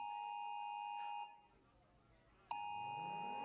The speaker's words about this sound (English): That's the emergency broadcast warning.